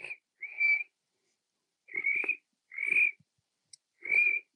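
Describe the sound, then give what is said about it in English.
A person imitates a cricket with their mouth, producing four or five short, high-pitched trilling chirps separated by brief pauses, fairly loud, with no talking between them. “I kept making the cricket sound occasionally.”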